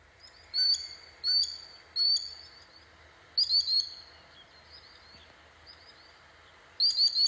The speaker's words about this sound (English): The last thing we're going to learn about sandpipers is their sound. Sandpipers sound like someone screeching. This is what they sound like.